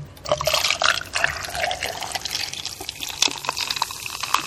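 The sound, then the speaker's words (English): A non-alcoholic drink is poured over ice, a steady splashing trickle of liquid with faint clinks, continuous for several seconds with no voices. “No, this is non-alcoholic. Oh, our listeners will be so disappointed. Oh, yeah, well, I've got ice in there, too.”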